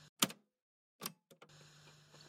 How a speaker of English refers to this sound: I don't think I'm the only person in this office anymore. I think I just heard someone sit down, or their chair pull out. Couldn't tell which.